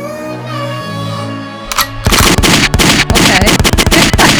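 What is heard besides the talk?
gunshot sound effects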